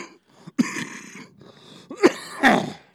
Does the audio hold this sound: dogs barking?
no